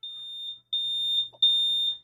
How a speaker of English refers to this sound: Right, everyone knows this one, right? It's a smoke alarm, so when it goes off, what do? Right, you run, you get out of the house. Like, it tells you, get up out of bed, get the kids, get out of the house. It's an early warning system.